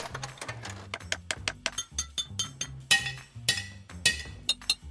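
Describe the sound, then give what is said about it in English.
A tiny hammer taps quickly and lightly in an uneven rhythm over a bouncy low musical line, with several brighter, ringing metallic clinks standing out toward the end. “Whoa, you are good at hammering.”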